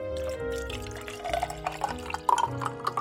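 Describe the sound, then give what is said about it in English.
Tea pours steadily into glasses, with ice taken from a bucket dropping in and several bright clinks scattered through the pour. No one speaks. “She plucked ice from the bucket and plopped it into the glasses and poured the tea.”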